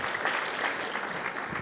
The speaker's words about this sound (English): Would you give the folk on this platform a hand clap? What an anointing. What an anointing.